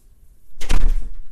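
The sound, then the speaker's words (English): A door swings shut with a single solid, loud thud, followed by a brief rattling settle as it closes. No one speaks. “Close the door, baby.”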